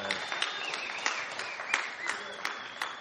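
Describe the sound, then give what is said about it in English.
An audience claps together in a steady, dense wash of applause, with a few sharper individual claps standing out over the continuous patter for the whole few seconds. “You can clap.”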